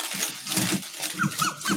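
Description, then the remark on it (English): Continuous rustling and shuffling of papers as someone rummages through a pile looking for deeds, with soft bumps and a few faint squeaks mixed in; no one speaks. “I'm looking because I think I have them. I honestly think I have them. Hold on a minute.”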